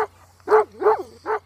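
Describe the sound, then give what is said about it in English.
A dog, Finn, barks outside three times in a loose, unhurried rhythm, each bark full, with a steady low hum underneath and no one talking. “I heard Finn barking outside.”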